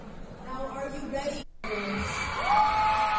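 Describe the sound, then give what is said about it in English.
An audience, mostly women, claps and cheers for drag queens performing at a high school, with high whoops and yells rising over a steady wash of crowd noise. A brief cut of silence splits it partway, then the cheering swells louder. “Look and listen who applauds.”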